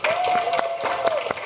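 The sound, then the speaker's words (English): An audience applauds steadily for Dan, host of The Sporkful, a dense wash of many hands clapping loud, with a thin sustained whistle-like tone running through it. “Let's give a big round of applause for Dan.”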